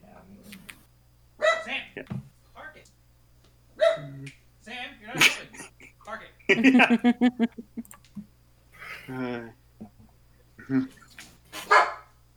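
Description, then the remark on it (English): A dog barks in a quick run of short, sharp yaps, fairly loud, while people talk around it before and after. “Bark, bark.”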